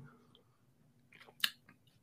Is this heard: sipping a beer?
yes